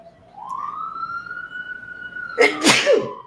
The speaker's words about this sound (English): And there's sirens outside because I live in New York City. Sirens outside. And it never ends. There's sirens all the time.